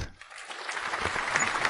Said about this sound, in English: That's right? That's for us. That's a self-applaud, right?